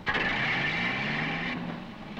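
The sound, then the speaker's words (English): Jared's machine drones steadily in the distance as it drives off, heard at a train station: a continuous rumbling hum with a faint tonal whine that eases slightly toward the end. No voices. “We skip the ride in the machine this time, and instead crossfade back to the train station, with the sound of Jared's machine driving off in the distance.”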